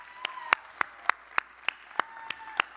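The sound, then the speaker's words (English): An audience gives a hand clap of praise, about nine sharp, even claps at a steady, brisk beat, with a faint sustained tone humming underneath and no talking. “Give yourself a hand clap of praise, all right?”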